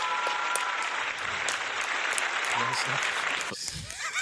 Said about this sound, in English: And now for the correct applause.